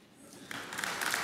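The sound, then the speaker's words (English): Audience applause swells up quickly from a quiet start, a dense wash of many hands clapping that grows louder and fuller within about a second. “Okay, so I'm not looking for applause.”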